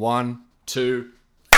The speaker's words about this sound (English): Now that's better. Now that's better. That's better. That's how you clap better. That's how you clap in time. Exactly right.